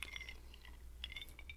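Two light glass clinks from a bourbon toast in the Bourbon Lounge, one at the start and another about a second later, each ringing briefly with a bright, high tone over quiet background hum.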